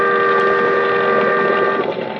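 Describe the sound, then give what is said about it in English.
A boat siren blares in fog on San Francisco Bay as the boat passes a few yards away. The tone is loud, steady and droning, rich in harmonics, and is sustained for about two seconds over a low rumbling wash of noise before easing slightly at the end. “But the boat siren, crying its warning, drowned out my shouts.”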